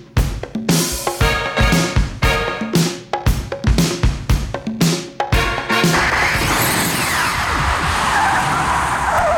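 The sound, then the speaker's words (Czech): A car revs in a series of sharp, rhythmic bursts, then speeds off with a loud, sustained screech of skidding tires that fills the last few seconds, with no voices. “Nastavujeme náš DeLorean a uslyšíme se za 10 let.”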